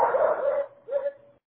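A dog gives two barks, the first longer and the second shorter after a brief pause, each with a slightly whiny, drawn-out tone, with no one talking.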